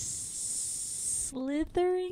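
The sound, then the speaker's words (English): A person imitates a snake, making a long, sharp hiss for about a second, fairly loud, then breaks into a couple of short voiced syllables. “Slytherin. Snake.”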